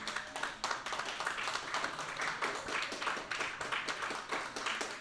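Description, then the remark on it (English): A group applauds as a vote to pick the winning drawing, many hands clapping at once in a dense, continuous patter that holds at a fairly even level for several seconds with no talking. “I feel like it has to be due to, like, a round of applause vote.”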